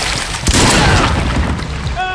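A shotgun fires silver buckshot with one sharp, booming blast, followed by a dense, roaring wash of noise that lingers and slowly fades, with a faint high ringing tone near the end.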